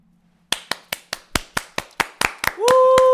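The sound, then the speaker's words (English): Hands clap in a quick, steady rhythm, about a dozen crisp, fairly loud claps, and near the end a held, rising tone, likely a voice, joins them. “It's us clapping.”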